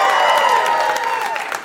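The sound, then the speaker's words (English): An audience claps and cheers steadily, with whoops and excited voices rising over a dense wash of applause that stays loud throughout. “No reason to applaud for it, but...”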